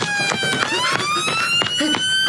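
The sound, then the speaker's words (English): A police car siren from a police car following behind a car wails with a slow, rising electronic tone rich in harmonics, sounding loud and continuous throughout, broken up by short sharp bursts of noise. “Clive, the Rozzers are behind us, Clive.”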